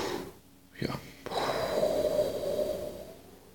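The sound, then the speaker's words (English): A person demonstrates forceful deep breathing: two quick, sharp snorting intakes followed by a long, loud, rushing exhale that slowly fades out. “the Wim Hof method. And so, you know, breathing.”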